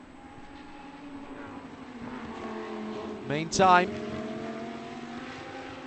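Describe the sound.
Lamborghini Super Trofeo race car engines drone steadily at Watkins Glen in 2018, with one car screaming past in a sharp, rising then falling whine around the middle, while a commentator talks over the track noise.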